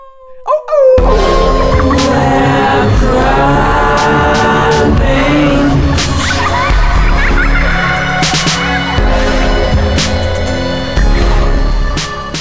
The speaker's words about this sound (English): Wow, I can't believe you found the time to add those sound effects. Yeah, it's pretty great. I know, I just realized how easy it is to add howling sound effects.